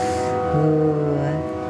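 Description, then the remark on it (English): A train whistle blows one long, steady chord of several held tones, with a lower note swelling in partway through before fading, over a soft background hum. “Oh, there's a train whistle here.”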